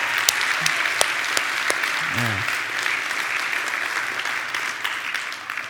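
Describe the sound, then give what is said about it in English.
The Koinonia church audience applauds steadily to give thanks and praise for everybody standing, a dense wash of clapping with sharper individual claps popping out and a brief voice calling out partway through, tapering slightly toward the end. “As you are seated, would we also give thanks and praise for everybody who's standing?”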